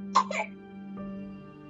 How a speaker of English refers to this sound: Can you hear my baby coughing? She's getting more teeth in, so her mouth is really juicy. But she's alright. If anyone was concerned, she's alright.